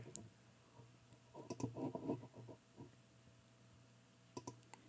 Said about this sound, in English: I'm clicking before it even unlocks, baby.